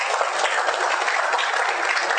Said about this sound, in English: Thank you very much. Let's give our applause as they sit down.